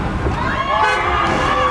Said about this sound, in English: And this is the audio of a raccoon falling into a tarp.